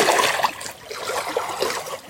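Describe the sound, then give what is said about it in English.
Steady running water with a continuous bright, splashing texture, fairly loud, flowing without pause and no voices present. “Listen to the water.”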